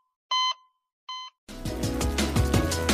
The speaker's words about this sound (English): After all, it's not that first beep we're concerned about. It's this one.